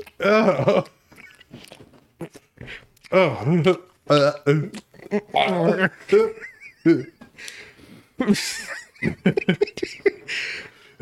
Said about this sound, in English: Just imagine the bitter silence of him chewing on a condom while she watches.